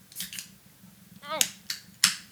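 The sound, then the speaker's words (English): A beer can is cracked open with sharp, snappy pops and bursts of fizzy spraying hiss, a few quick clicks following, with a brief rising vocal sound in between. “Oh, it sprayed me.”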